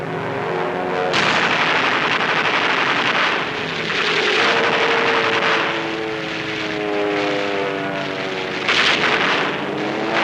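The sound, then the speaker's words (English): A high squadron and a low squadron of warplanes roar overhead in the film 12 O'Clock High, loud droning propeller engines with rising and falling harmonic whines as the aircraft pass, punctuated by bursts of sharper noise like gunfire. “On your toes, high squadron, low squadron, here they come.”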